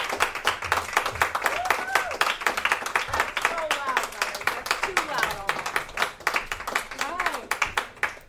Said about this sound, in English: Clap your hands together really loud. Clap your hands together the loudest you've ever clapped before